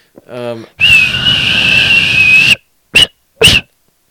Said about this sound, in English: Hey, good whistling.